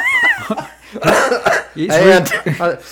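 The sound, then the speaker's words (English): A few harsh coughs burst out in quick succession, followed by strained, groaning vocal sounds from the same person. “So anyway, I started coughing.”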